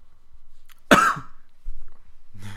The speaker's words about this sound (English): Punctuated by coughs. I apologise.